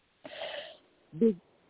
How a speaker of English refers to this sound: Now, what you need to do is you need to take a deep breath and cough from your gut and keep doing it.